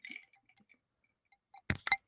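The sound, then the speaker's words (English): Two sharp glass clinks near the end of a toast with a glass of Southern Comfort and Diet Coke, after a few faint small taps and ticks; no one speaks. “But my glass says fucking hooray on it. So. Well, cheers, girl.”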